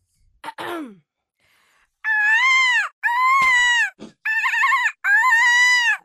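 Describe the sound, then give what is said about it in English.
A person imitates a sheep squatch's bleating: a quick falling squeal, then four long, wavering bleats in a row, each about a second, loud with short gaps between them. “Two bleats and then a little bit of the thing.”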